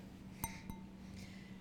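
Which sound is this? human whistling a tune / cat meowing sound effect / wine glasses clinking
wine glasses clinking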